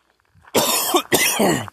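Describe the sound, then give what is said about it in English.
Two loud, harsh coughing bursts with raspy throat clearing from a tickle in the throat, each lasting about half a second, separated by a brief pause, with no talking. “Sorry, I really have a tickle here. I need a drink of water, but there's none to be found.”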